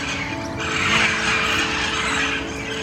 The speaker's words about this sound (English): Meet the wild parrots of Southern California, and this cacophonous cajoling mob makes sure everyone knows they are here. Each morning they fly in, and each evening they fly out, shrieking and screeching joyfully to one another all the while.